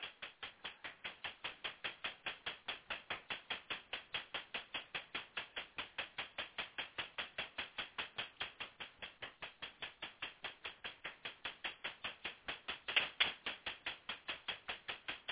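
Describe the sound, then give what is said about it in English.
A deck of tarot cards being shuffled, a steady run of quick, crisp slaps and clicks repeating about four times a second for the whole stretch, with no talking. “So I'm going to now just shuffle and clear this deck.”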